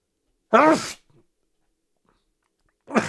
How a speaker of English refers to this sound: Ooh, I gotta sneeze.